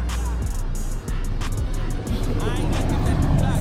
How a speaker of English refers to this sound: Hey, wait for this car.